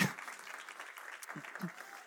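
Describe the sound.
A crowd claps steadily, a dense patter of many hands that stays fairly even for a couple of seconds, with a few low voice-like bursts mixed in beneath the applause.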